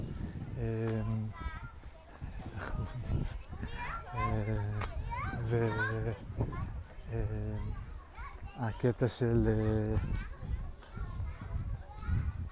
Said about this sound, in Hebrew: יש פה גני ילדים, ילדה אחת שוכבת בתוך הגלול כזה, וילדה אחרת עם אוזניות כאלה, over ear גדולות, מכסות אותה, מצחיק, איזה עולם יש לילדים.